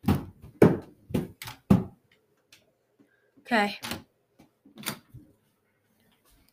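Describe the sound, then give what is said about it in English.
A few heavy, evenly spaced thumps, then a basement door creaks open with a short, strained groan. A voice speaks briefly. “Creaking noise!”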